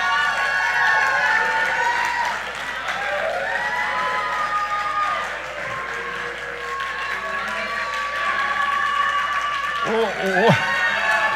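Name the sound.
audience shouting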